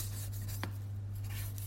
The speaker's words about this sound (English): The yam. Slicing the yam. But it doesn't sound like a yam being chopped. It's quite thin. It's not like tok tok. Maybe the yam is small. Honestly, it sounds like paper rustling.